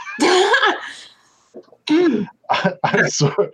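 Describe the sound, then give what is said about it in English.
A person coughs: a long, raspy, voiced fit, then a pause and three shorter harsh bursts in quick succession, fairly loud. “Don't cough now.”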